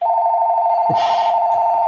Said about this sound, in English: And we're getting a phone call. I know, we're getting a phone call. You should answer that.